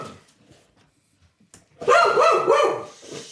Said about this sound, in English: Doggy interruption. Oh. Let's take this moment to pause. Okay, that was a great pause.